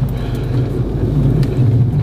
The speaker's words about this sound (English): Car's coming.